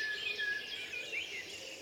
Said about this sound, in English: As you can hear, it's quite deafening this morning. I'm just underneath my favourite blackbird.